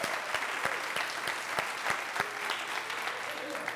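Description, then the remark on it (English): A church audience applauds its tech team and worship team, a dense patter of many hands clapping at an even level, with a few sharper claps standing out at a regular beat throughout the few seconds. “but our tech team, our worship team, all morning long have been getting ready for power outages and contingencies, and they do a great job every week, and let's give them a round of applause for that.”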